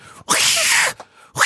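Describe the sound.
A person imitates how their cat hissed at them while pooping: a loud, harsh, breathy burst lasting over half a second, then a second hiss starting after a short pause. No words are spoken.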